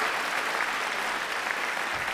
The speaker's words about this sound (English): Let me give a shout out to Jesus, because Jesus always in the room. Clap for the Lord. Give God some glory.